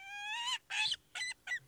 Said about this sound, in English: Is that not a bald eagle? This is a bald eagle.